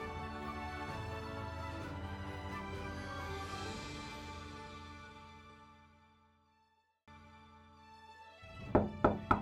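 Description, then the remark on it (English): Three sharp knocks on a door land close together near the end, sounding over sustained orchestral music that fades out, pauses briefly, and then comes back. “You can knock as much as you like.”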